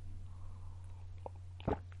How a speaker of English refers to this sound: Wow, that's a big sip. My throat's so dry.